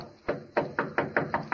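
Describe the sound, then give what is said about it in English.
A series of about seven sharp knocks on a door, one isolated rap followed by a quicker, steady run of raps, moderately loud with no one speaking. “Who's there? Dr. Kettler. Who is it? I have found my way back to you. Open the door”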